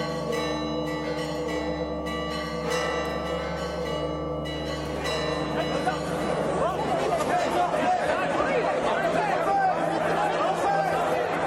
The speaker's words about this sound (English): The bells are incredibly loud, though that helps somewhat with the jet lag. And frankly, the sound of bells is preferable to some other sounds for which the sepulchre has become known.